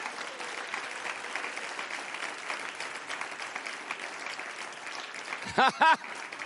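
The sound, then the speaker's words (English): An audience claps its hands to the Lord in a dense, steady wash of applause throughout, with two short, loud vocal cries rising over the clapping near the end. “Come on, clap your hands to the Lord.”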